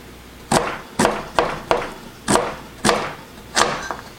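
A knife chops a peeled carrot on a cutting board: about seven sharp, crisp thuds at a steady, unhurried pace, fairly loud, with no voices.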